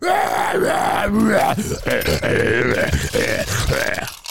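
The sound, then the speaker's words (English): A voice imitates deathcore screaming with a loud, sustained guttural growl that roars and groans for about four seconds, rough and raspy with a few brief breaks, before cutting off. “It sounds like the fucking Tasmanian devil.”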